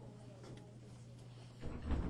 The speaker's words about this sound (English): I heard the door shut. Cool.